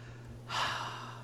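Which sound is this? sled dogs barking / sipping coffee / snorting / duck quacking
snorting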